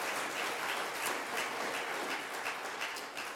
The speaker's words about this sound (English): And so just go ahead and give them a big, big hand clap for being here today.